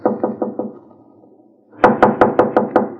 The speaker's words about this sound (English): Now knock.